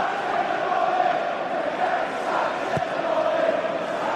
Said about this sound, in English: Sacked in the morning is the cry from a section of the crowd, or I'm sure it's from the Stoke City fans, who are rather enjoying their day out and are rubbing everybody's noses in it at the moment.